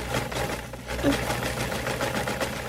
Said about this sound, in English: Sewing machine, you've already done this.